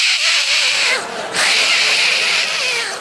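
A cat aboard a 747 airplane yowls in loud, drawn-out distressed wails as the plane takes off and the cabin decompresses, with a brief dip in the middle before the strained cry resumes and trails on.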